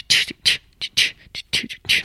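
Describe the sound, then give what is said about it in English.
A voice squawks out a rapid run of shrill, screechy calls imitating the seagull part of a song, about eight short bursts in an uneven rhythm over two seconds, fairly loud. “You know that like seagull part?”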